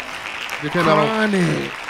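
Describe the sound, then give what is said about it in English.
Steady, fairly loud hand clapping like a small round of applause, with a voice calling out over it midway, with no actual words spoken. “Hand claps.”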